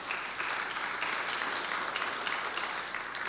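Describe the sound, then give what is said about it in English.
Steady applause from an audience for the speaker's wife as he mentions their 36th wedding anniversary, a dense wash of many hands clapping at a sustained, even level for a few seconds with no voices standing out. “I imagine that applause is for you.”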